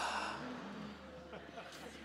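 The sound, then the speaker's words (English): A soft, breathy rush of air as several people at a Bible session inhale together on a count of three, strongest at the start and tapering off over about two seconds, fairly quiet with no talking. “So on 3, 2, 1, we're going to breathe in together.”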